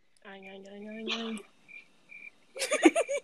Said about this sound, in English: Cricket.